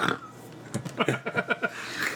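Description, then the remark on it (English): A person sputters and spits out a mouthful of drink in a rapid series of wet, choking bursts, moderately loud, then trails off into breathy noise. “You spit. That was gross.”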